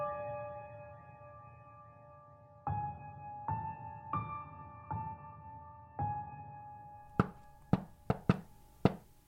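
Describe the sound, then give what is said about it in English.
A shave-and-a-haircut rhythm knocked on a door over a low, humming musical drone: five even raps, a pause, then a quicker burst of sharper, louder knocks. “To this day, all it takes is that rhythm to be knocked on my door, for my stomach to drop and my heart to miss a beat.”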